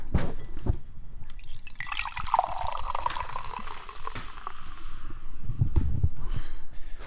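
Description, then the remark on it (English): A cherry drink pours into a glass, a steady gurgling trickle with rising pitch as it fills, followed by a few drips and clinks, with no one speaking. “Here, let me pour your drink.”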